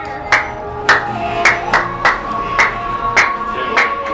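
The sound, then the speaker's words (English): Someone claps their hands about eight times in a fairly steady rhythm, each clap a sharp, bright smack standing out clearly over a low background hum. “This is a no clap zone.”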